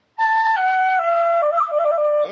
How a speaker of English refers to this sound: I don't know if you saw the video of me doing my mean penny whistle solo.